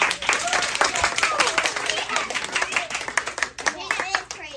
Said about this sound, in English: Give Peanut a round of applause.